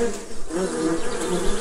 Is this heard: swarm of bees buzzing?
yes